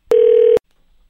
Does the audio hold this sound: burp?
no